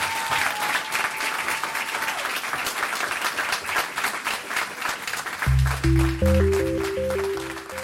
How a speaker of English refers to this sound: So let's give another round of applause to Nick Stone.